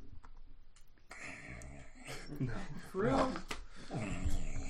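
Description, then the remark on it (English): A person mimics snoring with a run of raspy, throaty, drawn-out breathing noises, fairly loud, growing stronger toward the end. “No, you snore all the time.”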